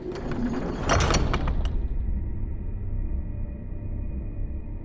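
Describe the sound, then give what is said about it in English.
A heavy metal furnace door scrapes and grinds shut with a clanking rattle, then a low, steady rumble continues on its own, fairly loud. “is shutting the furnace door.”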